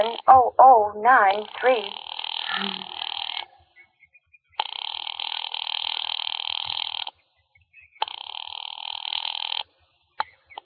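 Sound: telephone line ringing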